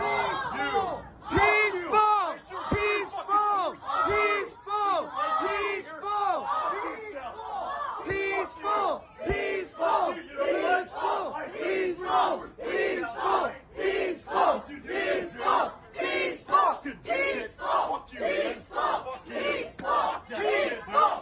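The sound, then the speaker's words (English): A large crowd of protesters shouts and yells continuously, voices overlapping in loud, rhythmic bursts like chanting, with a few sharp thuds early on. “Trying to intimidate, a big guy trying to intimidate people and get up in their face because they're protesting and he don't like it.”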